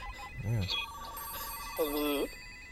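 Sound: telephone ringing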